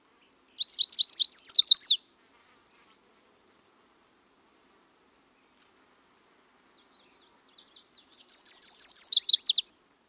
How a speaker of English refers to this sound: The territorial protection songs of the yellow warbler, however, are quite varied and can be very similar to other warblers. In these songs, the rhythm and structure can be variable.